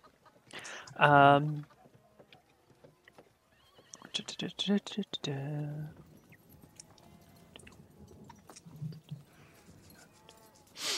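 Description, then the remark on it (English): A horse that has been ridden hard by an arriving messenger whinnies loudly twice, a few seconds apart, with a quick patter of hooves in between and softer rustling noises carrying on afterward. “So a messenger arrives early in that day on a horse that looks like it's been run pretty hard.”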